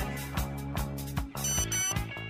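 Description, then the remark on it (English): An old-school SMS alert tone plays alone: a bright, electronic melody of short, evenly spaced pulses, repeating quickly at a steady, fairly loud level with no voices. “No, that's like old school SMS.”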